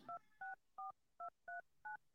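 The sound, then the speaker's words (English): Six short, evenly spaced touch-tone beeps from a phone keypad as a man dials his wife, each a clean dual-pitched tone with brief gaps between, clear with no talking. “I'm going to make a quick phone call here.”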